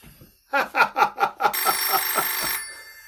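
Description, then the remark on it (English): A telephone bell rings loudly, first in a rapid series of short metallic pulses and then in one sustained, jangling ring before it stops abruptly. “The telephone's ringing.”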